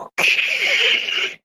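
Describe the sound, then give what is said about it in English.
A voice imitates an old dial-up modem with a single steady, hissing screech about a second long, loud and bright, with a faint warbling tone beneath it. “And if you took their shoe off, it made a sound like an old modem, like.”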